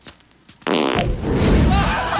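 After a brief quiet moment, a loud, sustained fart sound effect erupts and rumbles on for over a second, with a sputtering, buzzy texture that grows raspier toward the end.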